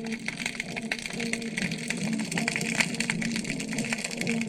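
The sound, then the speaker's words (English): Dense, continuous crackling of snapping shrimp, inch-long shrimp snapping one enlarged claw, like bacon frying in a pan: countless sharp little pops run together throughout, at about 6:20 p.m., over a steady low humming drone in the distance from toadfish vibrating their air bladders. No voices. “You hear the crackling sound. Those are snapping shrimp.”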